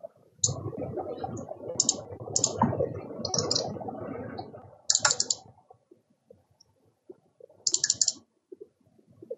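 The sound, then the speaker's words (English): Rapid clattering computer keyboard typing for about five seconds, then scattered individual key clicks with pauses between them. No one speaks. “I hear like underwater sound and a lot of clicking.”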